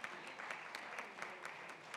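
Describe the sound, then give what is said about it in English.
A crowd gives a family a round of applause in support at a dedication, clapping steadily in a dense, crackling patter of many hands, sustained and fairly loud throughout with no one speaking. “Let's give this family a nice round of applause and support.”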